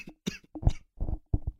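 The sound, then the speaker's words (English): A fit of sputtering coughs, five or six harsh bursts in quick, uneven succession, as someone chokes on a drink after trying to breathe while drinking. Some are sharp and raspy, others lower and throaty. “I tried breathing while drinking.”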